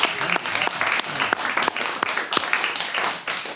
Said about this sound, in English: The scores are even on 54 points. Oh, man. Round of applause for both of our teams.